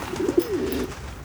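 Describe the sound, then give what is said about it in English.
A pigeon or dove gives a single low, warbling coo lasting under a second, clear, followed by quiet background with no talking. “So he would often buy a bird from one of these merchants, take it out of its cage, and release it, watching intently as it fluttered away.”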